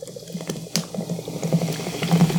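Liquid pours steadily, with a bubbling, fizzing gurgle that builds as it foams, a small splashy burst near the start, and no talking over it.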